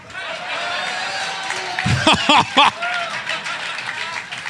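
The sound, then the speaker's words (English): A crowd gives light, steady, polite applause after a joke is told, holding at an even level throughout, with a few brief voices or whoops rising over the clapping partway through. “Some polite applause.”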